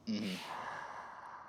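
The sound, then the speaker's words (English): A person deliberately blows a breath out through cupped hands, fairly loud, starting with a short voiced catch and then a steady, airy rush lasting over a second, jokingly called a corona breath. “That's my corona breath.”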